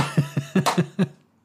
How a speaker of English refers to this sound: Are you clapping? I was just knocking my gavel.